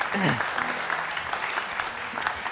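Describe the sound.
An audience applauds steadily for the morning's scripture reader, many hands clapping in a dense, continuous wash of sound, with faint voices underneath at the start.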